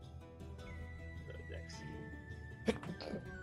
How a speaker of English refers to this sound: Bless you. Thank you. Oh God. You are forbidden from sneezing ever again.